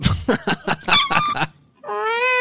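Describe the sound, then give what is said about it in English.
A cat lets out a single drawn-out, fairly loud meow, preceded by a rapid run of short, clucking-like vocal bursts and a brief pause. “stop touching that cat.”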